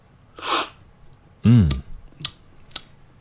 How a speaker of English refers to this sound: Of course. And then I slurp it. Okay. This is really important. Wow. It's like a, you know, I want to slurp it. So it's like a spray paint can in my, it just sprays my palate. And so I can really taste the coffee. So it sounds a little bit like this.